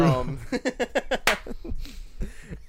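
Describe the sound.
A single sharp hand clap cracks out midway through a string of rhythmic vocal sounds, loud and brief, standing out from the choppy voiced bursts around it.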